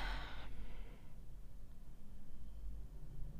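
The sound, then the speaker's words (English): A long, breathy exhale through the mouth during a Nadi Shuddha yogic breathing exercise, airy, fading out after about a second into quiet room tone with a low hum. “Take a big long exhale out of the mouth.”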